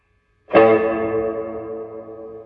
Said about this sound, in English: Okay, so I gotta say, there's something about the Champion 40 that has this, like, this quackiness to it. Like, it's a little quacky sound. It's got a little bit of, like, a honk to it, you know? It's almost got too much body, you know?